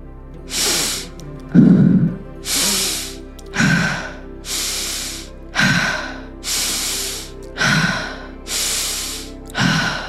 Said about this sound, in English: Keep it going. Finding that place in your body, and we are breathing into that space. With every inhale, we are breathing in compassion. And with every exhale, we are surrendering the idea that we must be right. Inhale, compassion.